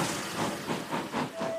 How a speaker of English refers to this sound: And with that, the royal engine sounded his royal horn. Ta-da-da-da! And puffed away.